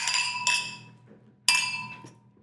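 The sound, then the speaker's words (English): Wine glasses clink together in a toast, three bright ringing chimes with shimmering overtones that decay slowly, fairly loud, with faint background murmur. “Well, cheers to that.”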